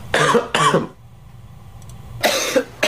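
Two quick, harsh coughs caused by a chili pepper, close together, a short quiet pause, then another rough cough burst with a wet, throaty edge, loud.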